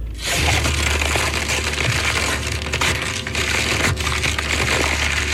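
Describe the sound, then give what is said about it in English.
Gift wrapping paper is torn off a big gift, a Bradley vertical smoker, and crumpled in a loud, steady burst of crackling and ripping that continues without pause for several seconds, with no one talking. “It's a lot of wrapping paper because it's a big one.”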